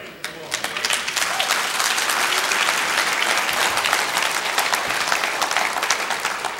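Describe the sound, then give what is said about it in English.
Audience applause: a dense, steady wash of many hands clapping, rising quickly and holding at an even, fairly loud level for several seconds without fading. “And if you can't agree or clap, just say, oh my, whatever, oh God.”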